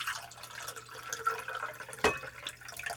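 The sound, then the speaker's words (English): Cold-brewed tea, a blend of Sencha green tea and Pai Mu Dan white tea brewed for about a day, pours steadily into glasses with ice cubes for a few seconds, a soft trickle with one sharp clink of ice partway through; no one speaks. “So this has been brewing for about a day. Okay. And I'm going to pour it.”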